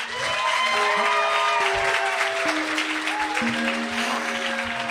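An audience applauds steadily and loudly for the whole stretch, a dense wash of many hands clapping, with a few sustained musical tones playing underneath.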